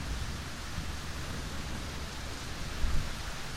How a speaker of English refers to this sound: The storm seems to be intensifying, and lightning and thunder crackle and sound with booms across the sky.